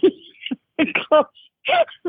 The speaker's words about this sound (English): Hello, are you blowing your nose? Yeah, I am. Oh my God.